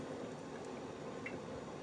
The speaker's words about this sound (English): Oh, I actually felt the oil, but I didn't pull away enough. So I've got oil all over my hands, but it's all dripping into the bowl. So I'm not going to lose what's in the bowl.